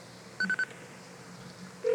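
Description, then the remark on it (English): A hotel phone call being connected to Jeremy McGrath's room: three quick electronic beeps in a tight burst, a brief hush with faint line hiss, then a steady lower ringing tone starting near the end. No one speaks. “One moment, I'll connect to you.”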